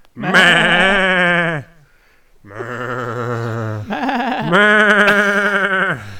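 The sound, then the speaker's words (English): Loud sheep bleating: a long wavering bleat, a short pause, then two more drawn-out quavering bleats in quick succession, with no one talking. “cracking wine open with the sheeps by myself.”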